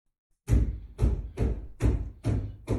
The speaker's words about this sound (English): And it's basically, I've moved to a new house. This thing is still fucking with me. And we'll just let this one play. Hear the footsteps?